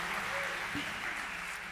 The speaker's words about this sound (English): Clap your hands in anticipation of God's word.